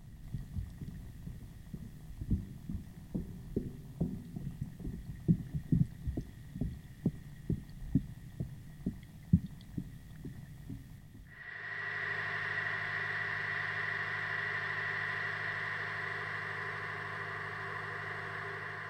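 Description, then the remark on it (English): A trawler tied up at Horgan's Quay on the River Lee, heard across the water at Kennedy's Quay: its diesel engine thuds in a slow, steady low rhythm, then gives way to a louder, continuous mechanical drone with a tonal whine. No one speaks. “a tied-up trawler's engines at Horgan's Quay can be heard clearly across at Kennedy's Quay, reminding us that the city is still an active port.”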